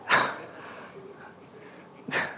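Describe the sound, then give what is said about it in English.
A person imitates a dog barking, with two short, harsh bark-like bursts separated by about two seconds of quiet. The barks are fairly loud. “Like the barking.”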